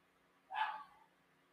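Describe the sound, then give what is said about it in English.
A single short bark from one of several pet dogs rings out, a bit muffled, against a quiet background hum with no one talking. “I mean, I can't control when my dogs bark.”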